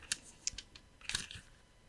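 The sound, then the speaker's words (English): Quiet, crisp papery crackles and soft rustles from pages of an old book being turned, a few short bursts spread over a couple of seconds, with no talking. “You can hear me just turning the pages of this old.”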